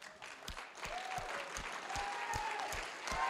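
A standing audience claps for the Lord together in steady, loud applause, with sharp hand claps standing out roughly every half second over a dense crowd clatter, and faint voices calling out beneath it.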